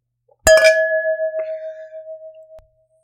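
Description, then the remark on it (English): A single bright clink of glasses touching in a toast, followed by a clear ringing tone that sustains for about two seconds before cutting off, fairly loud with no talking. “You guys, this is a long week, but cheers. Cheers.”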